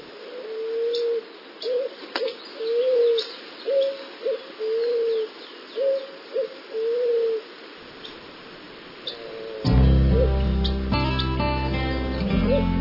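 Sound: doves cooing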